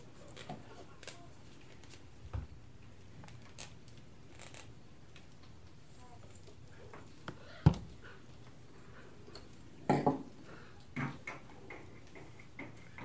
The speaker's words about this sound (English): Now they're on the roof. They're real loud on the roof, eh? I know, they like to walk around up there. Are those seagulls or ravens? Ravens. Yeah, they're always on my roof early in the morning banging around.